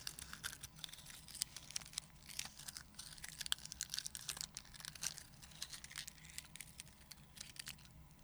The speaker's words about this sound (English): So I just happen to have plastic in my purse from that Play-Doh. So let's see how that sounds.